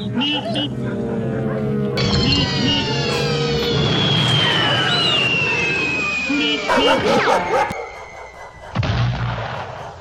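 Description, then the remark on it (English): A comic sound effect standing for a Georgian sheepdog and a Roadrunner mating: loud, frantic dog barking and high yipping tangled with a noisy, rumbling clatter and a long whistling sweep, continuing for about ten seconds with a brief drop near the end. “If a Georgian sheepdog and a Roadrunner got it on, it'd probably sound a little something like that.”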